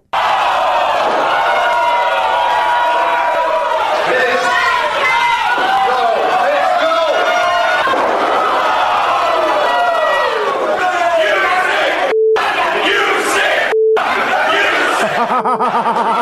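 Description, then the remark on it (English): A large wrestling arena crowd roars and chants loudly and continuously, reacting to a wrestler being hit with a chair and chanting "You sick F", with many overlapping voices, cheers and jeers, broken by two brief abrupt cutouts near the end. “And the crowd reacted like this.”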